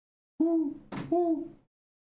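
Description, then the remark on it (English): A person imitates an owl with two fairly loud hoots split by a short breathy rush of air, each hoot a steady, slightly wavering tone. Then silence. “An owl.”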